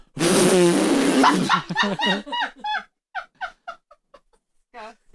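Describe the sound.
A person loudly imitates a fart with their voice: a long, raspy, buzzing blast lasting over a second, followed by a string of shorter sputtering bursts that trail off.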